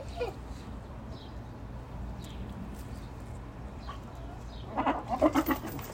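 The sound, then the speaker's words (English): A rooster gives a quick run of short, harsh squawking calls near the end, fairly loud, after several seconds of steady outdoor background noise with faint chirps. “You're a rooster, aren't you?”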